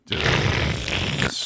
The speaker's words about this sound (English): Strong sniffle. Good job, buddy. Good job.